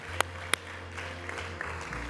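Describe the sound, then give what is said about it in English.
An audience claps for three or four people who raised their hands, in a steady, dense patter, with two sharper claps standing out early on. The applause stays fairly soft and even throughout, with no voices over it. “Would you give a round of applause to those three, four that raise their hands?”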